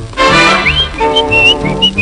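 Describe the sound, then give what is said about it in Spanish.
A person whistles a lively melody in short, sliding phrases, clear and up front over a full band accompaniment playing steadily underneath. “A mi chiquita yo le chiflaba”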